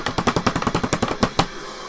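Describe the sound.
A quick, improvised drum roll of rapid, evenly spaced taps on a hard surface, fairly loud, ending with a couple of sharper hits before fading out. No one speaks.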